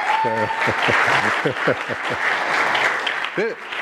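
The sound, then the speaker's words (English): An audience breaks into sustained applause for a man from the audience called up front, a dense wash of clapping that stays loud for several seconds, with voices rising and calling out over it. “If you're going to clap, now's the time to clap.”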